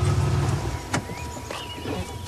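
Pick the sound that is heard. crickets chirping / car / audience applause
car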